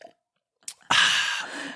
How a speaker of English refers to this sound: choking